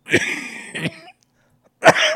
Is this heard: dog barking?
no